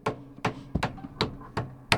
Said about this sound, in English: Oh, it's someone else coming knocking on the door. He's angry. Uh-oh, Jack the Tiger's here.